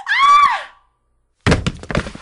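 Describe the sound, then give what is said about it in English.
A woman lets out a short, loud, high-pitched scream lasting under a second, then after a brief silence comes a burst of heavy thumping and crashing. “I'll just gag you so you're not tempted to scream again.”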